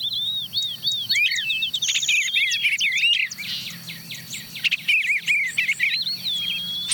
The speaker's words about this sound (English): Okay, who's that? There's a catbird, sounding like a cat mewing.